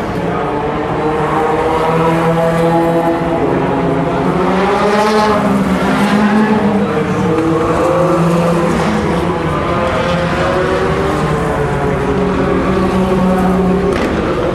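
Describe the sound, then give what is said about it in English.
A steady chorus of LMP2 prototype race car engines, including G-Drive, Ligier, Alpine and Manor cars, roars past continuously, overlapping harmonic whines rising and falling in pitch as one car after another streams by, loud throughout with no pauses. “And the LMP2s still keep coming.”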